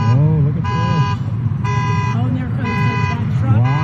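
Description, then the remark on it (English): Car horns and an alarm blare loudly in repeated on-off blasts about a second long, with a lower wavering tone and indistinct voices underneath, from cars floating in a parking lot in the Santa Cruz area flooded by waves generated by a volcanic eruption. “There's cars floating in the parking lot. There's a car. Horns going off.”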